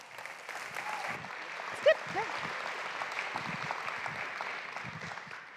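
An audience claps steadily for several seconds, a dense, even wash of many hands at moderate volume, with a brief sharp whoop or whistle rising out of it partway through.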